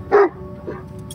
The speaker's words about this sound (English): A little barking is good.